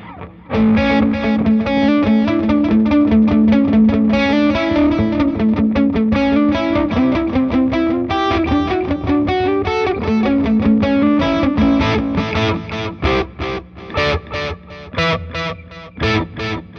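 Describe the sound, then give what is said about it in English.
A loud, gritty electric guitar plays a steady riff through a delay effect applied to the distorted signal, echoing repeats trailing each note, the distortion thick and continuous before the playing turns choppier near the end. No one speaks. “It just sounds like a more natural delay. Now we're actually delaying the distorted signal.”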